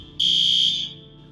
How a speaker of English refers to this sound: And it's about 5:30 in the morning. Some idiot had to pull the damn alarm,